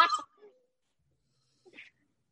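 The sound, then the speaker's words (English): A person imitates a cat's strangled meow-scream, made as the cat tried to meow, spit out a bad-tasting plant leaf and scream at once: a short, harsh, turkey-like squawk, then a pause and a brief, softer warble. “And she tried to meow and spit it out and like scream all at the same time.”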